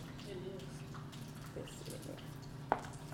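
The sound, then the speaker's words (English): Liquid pours steadily into a container with a soft, continuous splashing wash, faint murmuring voices underneath, and one sharp clink near the end. “Did you use a measuring cup or you just poured it in there?”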